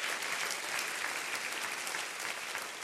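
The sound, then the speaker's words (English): An audience claps their hands together in a steady, dense wash of applause, many overlapping claps sustained at an even loudness throughout, with no voices standing out. “Everybody clap your hands and say, I love that about him.”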